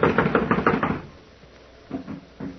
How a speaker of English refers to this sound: Blast it. It's locked from the inside. Well, someone is definitely in there. I'm going to knock.